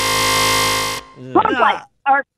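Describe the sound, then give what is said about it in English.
A loud, harsh game show buzzer blares steadily for about a second and cuts off abruptly, followed by a few brief bursts of voices speaking. “There she said after the buzzer.”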